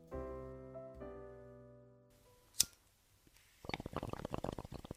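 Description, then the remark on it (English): A sustained musical chord fades out, a sharp click follows, then water bubbles and gurgles through a bong in a rapid, irregular burst of wet pops that continues to the end. “A faint voice can be heard bubbling up from the bong.”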